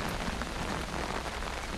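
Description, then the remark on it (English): Steady rain patters on a tent surface, a dense, continuous hiss of countless drops tapping, with no voices and no pauses. “I'm huddled up in my ear tent, knocking back a couple books off my reading list, while the pleasant pitter-patter of Mother Nature takes me outside my head for a while.”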